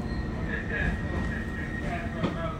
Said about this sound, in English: On this C train heading from 50th Street to the Financial District, there's plenty of room, maybe 18 people in the carriage.